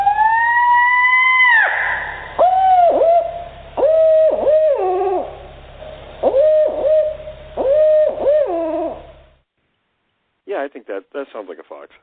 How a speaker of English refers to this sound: Listen, this is a reported Bigfoot sound, and then I'm going to play a fox right after this.